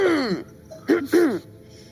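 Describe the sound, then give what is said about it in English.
A voice makes a deliberate, theatrical cough or throat-clearing, a drawn-out vocal sound followed by two short harsh bursts, fairly loud. “I'm going to do a cough like a”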